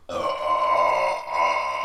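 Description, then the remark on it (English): A long, loud burp rumbles for nearly two seconds, sustained and throaty, with a brief dip partway through before it carries on. No one speaks over it. “You sound like whenever off Elf, whenever fucking Will Ferrell fucking burps for like 10 hours.”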